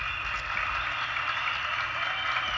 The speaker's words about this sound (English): So let's clap it up.